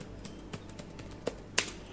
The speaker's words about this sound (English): Okay, now I'm going to search for one of my favorite authors, Mercedes Lucky. So I'm typing her name in now.